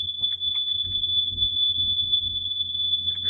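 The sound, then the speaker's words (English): A fire alarm sounds a shrill, high-pitched electronic tone that holds steadily for the whole stretch, fairly loud, over a low background rumble with no one speaking. “It's the fire alarm.”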